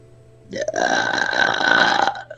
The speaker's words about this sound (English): Wow, even his burps are high-pitched.